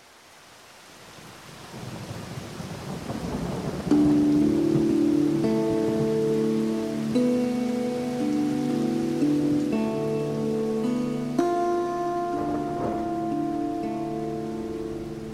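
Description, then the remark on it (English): Steady rain hisses throughout, with a low rolling rumble of thunder, soon joined by sustained, droning musical tones that swell and layer over the downpour. No one speaks. “Hala stood in the black rain outside the landlord's door.”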